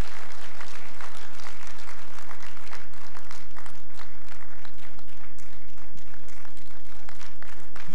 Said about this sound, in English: Let's put our hands together for him.